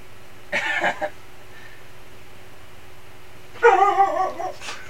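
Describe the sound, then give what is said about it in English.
A dog barks in two short bursts about three seconds apart, the second louder and more insistent, with a faint steady hum in the background and no one talking. “Oh, they're still in, despite the dog barking and a person at the door.”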